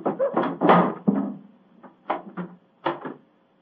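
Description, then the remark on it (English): Several heavy, hollow thumps land in an uneven pattern, like knocks against a wooden door, fairly loud, separated by brief quiet gaps: someone knocking again at the door of a house for the keeper to open it. “Knock again, old fellow, will you?”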